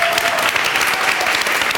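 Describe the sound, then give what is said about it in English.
A steady burst of audience applause, many hands clapping in a dense, even wash of crackling noise that holds at a constant loudness throughout, with no voices standing out. “Round of applause for this guy for a second.”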